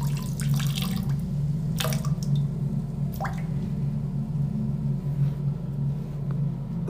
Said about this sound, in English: But I don't sit down. Oh, the wee-wee is being shy. There it goes.